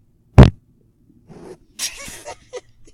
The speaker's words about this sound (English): literally during this meaningful conversation, you're trying to fart.